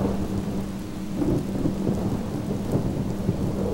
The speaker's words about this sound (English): She found herself back in the bedroom, feeling the rain blowing through the screen.